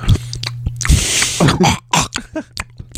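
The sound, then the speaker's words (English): Someone imitates chewing with their mouth: a string of wet, smacking and crunching bursts in an irregular rhythm, moderately loud, with a steady low electrical hum underneath and no speech. “That's what my chewing sounds like.”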